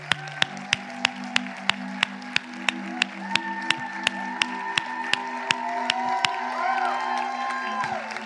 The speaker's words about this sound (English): Everybody's cheering for you, buddy.